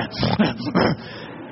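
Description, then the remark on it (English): A person imitates a big dog grunting and snorting: two short, rough, breathy bursts with a brief pause between them and no other talking. “If it's a big dog, the hair just stands straight up on his back. And he just starts. He grunts. He snorts.”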